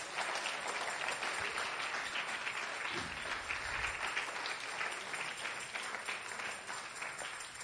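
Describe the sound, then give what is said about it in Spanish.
A large church audience bursts into loud, sustained applause for the Lord, dense overlapping clapping filling the whole stretch with steady energy and no pause. “Si le va a aplaudir, apláudale al Señor y apláudale fuerte.”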